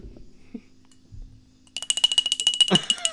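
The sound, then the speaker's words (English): A bell rings rapidly and loudly for over a second, a bright metallic clatter of fast repeated strikes with a steady high ring. Before it come a few soft, low thumps and near-quiet. “Come on down and give me that bell!”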